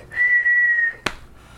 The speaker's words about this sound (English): I can't blow on it without whistling. I'm like, baby, yes, you can. Just, so we have to work on just, Mommy, I just can't. I just whistle all the time now. I just whistle all the time.